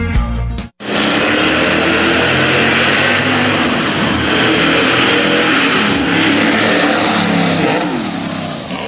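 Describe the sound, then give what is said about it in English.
A car engine roars loudly, revving hard and holding a steady, throaty growl for several seconds after a brief cut at the start, with no voices. “Wow, don't you just dig those sound effects?”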